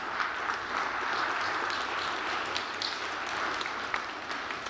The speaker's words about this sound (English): Let's stand and give the Lord a clap offering today. Yeah, give the Lord a clap offering.